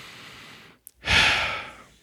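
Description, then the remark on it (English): A person imitates a baby's sniffle: a faint breathy draw, a brief pause, then one louder, airy snuffling breath that fades out. No words are spoken. “He might sniffle a little, and he's like...”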